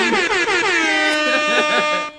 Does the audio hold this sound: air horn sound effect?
yes